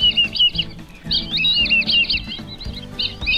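Black-bellied whistling ducks give a series of high, wavering whistles in quick multi-note phrases, some overlapping, over a steady low rumbling background.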